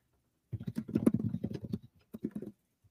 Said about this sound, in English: And y'all can probably hear her typing. I'm a loud typer. I'm sorry.